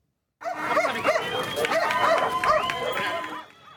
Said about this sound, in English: Canines were on their paws over the weekend in the Venezuelan capital of Caracas. 150 dogs joined their owners in a fun run of more than 2 miles.